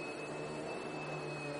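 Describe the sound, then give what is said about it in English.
An old, large upright push vacuum cleaner runs steadily while vacuuming a living room, with a constant whirring motor drone and a faint high whine, heard alone at moderate volume with no one speaking. “And she has, for some reason, broken out the old giant push vacuum and is currently vacuuming the living room.”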